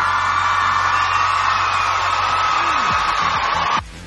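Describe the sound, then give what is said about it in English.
A crowd applauds and cheers for an absent contributor in a steady, dense wash of clapping with whoops and shouts mixed in, holding loud for several seconds before cutting off abruptly. “So even though he's not physically here in the ISC now, let's give him a big round of applause anyway.”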